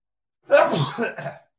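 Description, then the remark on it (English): A single sneeze, partly held back, bursts out abruptly and trails into a short breathy tail, with no talking over it. “Oh, bit of a sneeze snuck up on me.”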